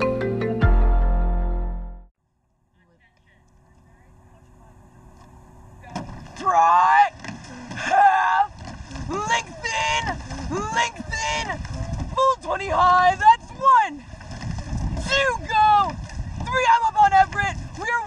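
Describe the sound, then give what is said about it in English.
A rowing race (regatta) with a coxswain, seated at the front of the boat facing the rowers, shouting loud, rhythmic instructions to them over rushing water and crew noise, the barked commands rising and falling in quick bursts. “That's audio from a regatta, which is what rowing races are called.”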